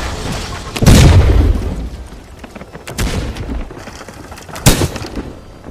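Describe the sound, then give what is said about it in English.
Cannons fire all at once in heavy booming blasts: first a loud, rumbling volley, then two sharper reports a couple of seconds apart, with no voices. “The cannons go off.”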